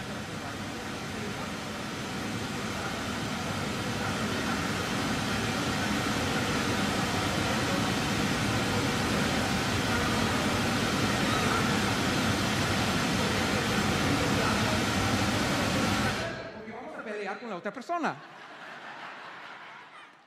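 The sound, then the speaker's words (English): Loud, steady white noise hisses continuously for about sixteen seconds, burying any voice beneath it, then cuts off abruptly, leaving a brief stretch of someone talking more quietly. “the point of white noise is to drown out other noises”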